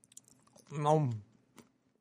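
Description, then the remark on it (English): Quiet chewing of crunchy walnuts, with soft crackly bites scattered through and a brief hummed vocal sound in the middle of the chewing. “This is so rude that I'm chewing on my nuts.”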